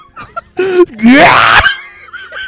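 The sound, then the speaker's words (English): A person lets out a loud, harsh, squawking scream in imitation of an African macaw, rising in pitch over about half a second, with shorter strained vocal noises before and after. “I need you to scream like an African macaw.”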